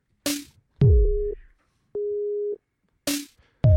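A phone ringtone plays a short sequence of loud electronic tones, sharp attacks leading into steady held beeps at a couple of pitches, repeating with brief gaps and no voices.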